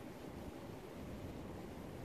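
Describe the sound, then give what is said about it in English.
Steady outdoor rushing noise of wind blowing mixed with flowing creek water, a continuous low rumbling wash with no distinct events, constant throughout. “So I hope that you're able to deal with a little bit of the background noise when the wind blows and it gets a little bit loud, or if the creek is flowing a little bit more than normal, and you hear a little bit of that background noise.”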